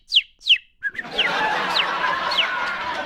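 A quail call: two sharp, descending whistled notes close together, followed by further repeated call notes over a steady, hissy outdoor background of other birds.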